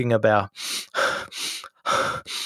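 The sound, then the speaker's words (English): After a brief voiced sound, someone takes a series of deliberate, audible breaths, in through the nose and out through the mouth, five airy whooshes in a steady in-and-out rhythm. “It's really important you breathe in through your nose and out your mouth, not the other way.”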